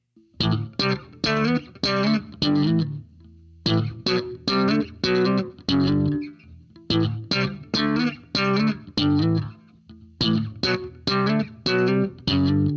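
A funky bass guitar riff in a slow song at 74 beats per minute, played with the pop part of the slap technique, fingers placed under the strings pulling them up and letting them snap back percussively in quick bursts, repeating the same loud phrase several times with brief gaps between runs.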